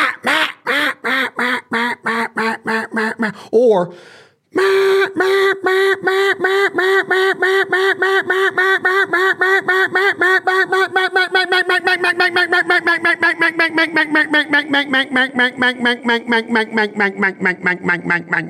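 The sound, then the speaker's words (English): A duck call blown in a long, rapid run of quacks, loud, with evenly pulsed notes that speed up and hold steady on one breath, after a short opening burst and brief pause. “With a duck call, you're keeping that air controlled. You might fill up your diaphragm and be able to do what I just did.”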